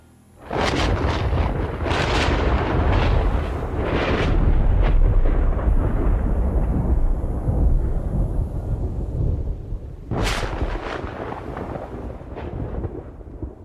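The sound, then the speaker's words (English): Loud thunder from a storm with lightning rolls on continuously, with sharp cracks near the start and another sudden crack around ten seconds before the low rumble carries on, with no voices. “Suddenly, the skies turned crimson and roiling clouds in the firmament unleashed thunder and lightning.”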